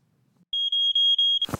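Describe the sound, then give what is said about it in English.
A piercing smoke alarm beeps loudly, a steady high tone pulsing in quick repeated chirps for about a second, then cut off by a burst of noise. “The piercing beeping scares me so badly I fall, land on my ass onto the floor.”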